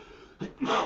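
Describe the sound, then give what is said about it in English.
A single sneeze, a short sharp intake followed by a breathy, noisy burst, fairly soft, with no talking around it. “Bless you.”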